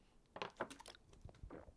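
Someone takes a quiet sip of a drink, a few soft wet slurping and swallowing sounds over under two seconds, with no talking.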